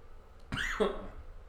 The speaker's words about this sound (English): But never coughed on the pod before. I hope that doesn't sound horrible in the audio. No, it didn't. It kind of just sounded horrible, period.